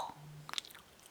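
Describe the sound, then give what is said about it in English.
A single quick, faint mouth pop that imitates a water droplet, a short bloop with a rising pitch, followed by a few tiny wet clicks against near silence. “I don't know how, but you made a water drop sound.”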